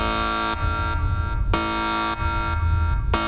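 A loud, buzzy electronic ship alarm for a yellow alert during a ship exercise repeats in steady cycles about every second and a half, each starting with a sharp harmonic blare that fades back before the next, with no voices.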